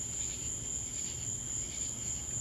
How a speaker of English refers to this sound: I love the crickets, how they just fit right there.